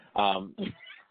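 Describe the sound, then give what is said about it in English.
A cat meows twice at the door, a longer, drawn-out cry followed by a shorter one after a brief pause, fairly loud and clear. “Hold on, I'm knocking my door. Is it my cat?”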